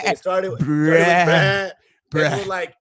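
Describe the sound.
A person imitates a sheep, letting out a short bleat followed by a long, wavering baa, then, after a brief pause, one more shorter bleat, loud.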